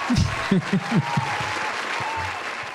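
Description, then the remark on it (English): An audience claps in a steady, dense patter that carries through the whole stretch, with a few short vocal outbursts over the applause at the start. “Clap for me.”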